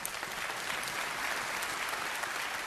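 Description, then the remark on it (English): An audience breaks into sustained applause in thanks for Jesus, a steady dense patter of many hands clapping together at an even level, without any voices rising above it. “Let's clap for that.”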